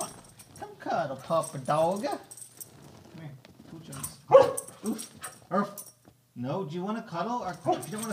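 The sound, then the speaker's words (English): A dog barks, one sharp bark standing out among shorter yips and whines, while a person talks over and between the sounds. “Our next Reddit post is woof. Bark.”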